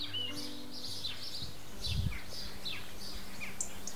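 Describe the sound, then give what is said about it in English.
A chorus of many birds chirping and twittering at once in a valley in autumn, calls overlapping continuously over a faint low background hum, with no voices. “Listen to this autumnal chorus in our valley.”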